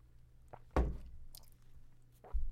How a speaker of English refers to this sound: Okay, sip. My throat's drying out.